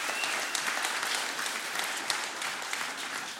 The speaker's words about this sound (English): Praise God for our worship team. Give them a round of applause. That's awesome.